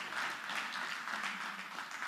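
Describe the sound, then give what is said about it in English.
Scattered applause from three people, a light, uneven patter of handclaps that stays at a steady, moderate level for about two seconds with no voices. “Yeah, it's okay to clap, by the way.”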